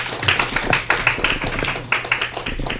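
An audience applauds in a dense, steady burst of many overlapping hand claps, fairly loud and sustained throughout with no voices standing out.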